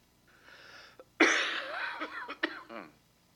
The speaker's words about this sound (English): Got some allergies going on in my head. Got drainage and it's making me cough.